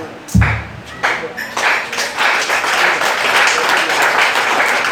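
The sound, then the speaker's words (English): A crowd breaks into loud applause, starting with a few sharp claps and a thump, then swelling into dense, sustained clapping that keeps building. “So you are clapping fury because it's touching you.”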